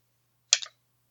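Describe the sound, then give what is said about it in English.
Dice rattle briefly across a surface in a quick clatter of sharp clicks, a loud first burst followed by a smaller bounce, then silence; rolled to choose between two characters. No one speaks. “I rolled the dice.”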